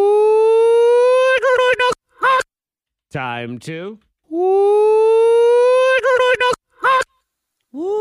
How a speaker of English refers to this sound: You're going to hear cock-a-doodle-doo backward 2 times.